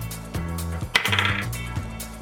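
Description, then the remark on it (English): Dice clatter and rattle across a hard surface, rolled for an attack hit in a tabletop role-playing game and landing a natural 20, a quick burst of bright clicking and tumbling over a low, steady musical background with no one speaking. “All right, roll the hit.”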